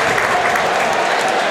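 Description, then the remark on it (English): A large football stadium crowd cheers and applauds as the player Hayden comes back out of the tunnel, in a dense, steady roar, loud and continuous throughout with no single voice standing out. “As Hayden comes back out to the tunnel to the cheers of the crowds.”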